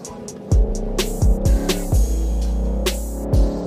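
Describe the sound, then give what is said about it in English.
A steady, heavy low rumble of road noise inside a car moving on a highway with the air conditioning blasting at full, with a droning hum and repeated dull thumps every half second or so, like tires crossing highway seams. No one speaks. “All right, so we took this thing on the highway to see how the Echo Auto deals with all of the noise when it's maxed out.”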